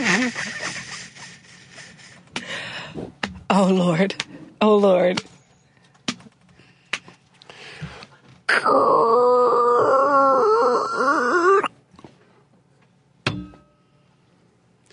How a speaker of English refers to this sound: And this is what I call man walking up the stairs and opening the door.